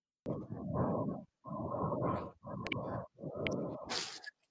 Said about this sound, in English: how fucking wild John's dogs are? half the time it sounds like they're getting fucking tortured